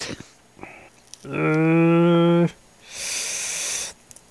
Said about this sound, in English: That is some rippy paper.